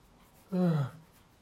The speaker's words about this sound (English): Sorry for the yawning. I hope I didn't trigger anyone. I just woke up and it's 10:30 a.m.